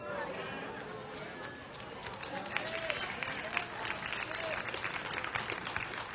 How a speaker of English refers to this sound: I wish you could see who's clapping and who's not.